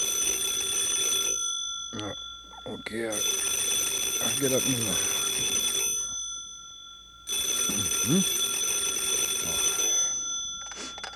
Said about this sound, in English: the phone beside his pillow suddenly went off.